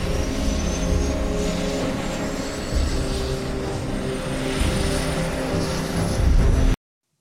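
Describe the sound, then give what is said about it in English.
An army helicopter powers up for takeoff in Alaska, a loud rotor-and-engine roar with a thin whine climbing steadily in pitch, sustained throughout before cutting off abruptly. “The way the helicopter picks up at the end.”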